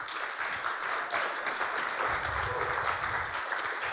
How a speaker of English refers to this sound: Give them another round of applause, folks, please. These folks were terrific.